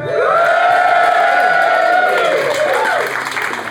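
A loud crowd cheers and whoops continuously in a vote for a team in a cooking competition, shrill yells and sustained voices blending with scattered clapping, the roar holding steady for several seconds before easing slightly at the end.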